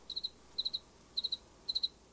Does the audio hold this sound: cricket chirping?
yes